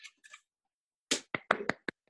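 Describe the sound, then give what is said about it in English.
A brief round of small hand claps, about five sharp, crisp slaps in an uneven burst, preceded by a couple of faint soft taps, with no voices. “Claps. We don't hear enough applause these days, so.”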